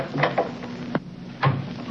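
A door being opened as a visitor arrives: a few short wooden clunks and rattles spaced across two seconds, with a faint steady hum underneath and no voices.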